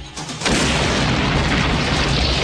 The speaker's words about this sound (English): That was a bomb?